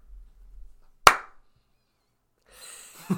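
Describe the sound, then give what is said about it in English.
A single sharp hand clap rings out loudly, standing alone with a quick decay. A faint low hum comes before it, and soft rustling noise follows near the end. “I don't know why I clapped.”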